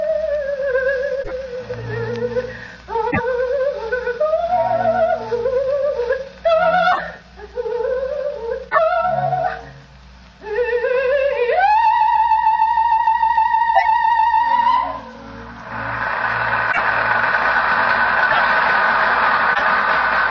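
A famous Italian soprano, sings a last-act aria from Verdi's La Traviata in an opera house with flowing phrases, then holds a long, bright sustained note before giving way to a steady wash of noise, like applause.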